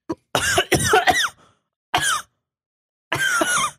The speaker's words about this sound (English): I actually had to cough.